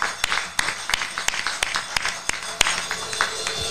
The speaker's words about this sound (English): Give a hand clap of praise.